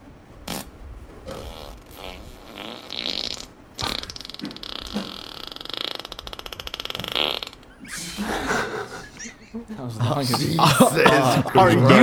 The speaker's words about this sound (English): Just to confirm, that was one fart. That was one ass rip.